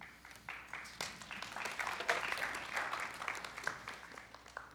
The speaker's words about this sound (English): I don't know if they're applauding because you're done or you just did a great job. She did a great job, didn't she?